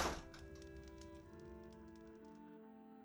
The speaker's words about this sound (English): And dear, please close the door.